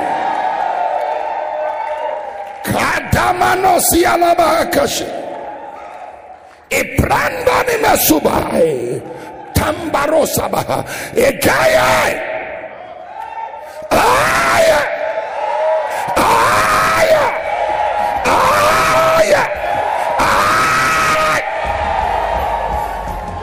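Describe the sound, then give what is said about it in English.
A crowd of people shouts and yells together in loud, repeated surges, with voices overlapping into a roaring din that rises and falls in bursts of a few seconds each. “And if you can shout wherever you are, the blessing of God is upon you.”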